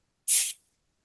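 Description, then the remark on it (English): A single short, bright burst of hissing sizzle as chicken stock is poured into a hot pan with olive oil, butter, fresh mushrooms and thinly cut veal, lasting about a quarter second before cutting off into silence. No voices. “I'm going to let that simmer for a few moments.”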